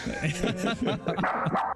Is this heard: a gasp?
no